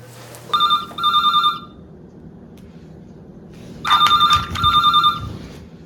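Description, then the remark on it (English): A telephone rings twice with an incoming collect call from an inmate at L.A. County Jail, each ring a quick electronic double trill, separated by a pause of about two seconds. The ringing is loud over a low background hum. “Collect call from inmate Stone at L.A. County Jail.”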